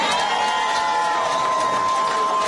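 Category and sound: crowd, rally crowd cheering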